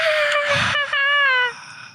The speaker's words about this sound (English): Oh, that's wow. A echo combo effect. Scream. That's a combo scream.